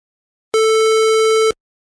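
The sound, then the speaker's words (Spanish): A single steady square-wave synthesizer tone, buzzy and bright with a hollow edge, holds at one pitch for about a second and starts and stops abruptly, with silence around it. “Luego tenemos la square wave, que es la onda cuadrada.”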